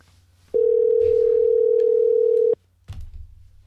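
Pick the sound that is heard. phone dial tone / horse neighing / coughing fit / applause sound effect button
phone dial tone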